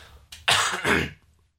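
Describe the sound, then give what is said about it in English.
A harsh double cough, two quick raspy bursts back to back after a short throaty catch, with no talking around it. “What do you mean, coughing off?”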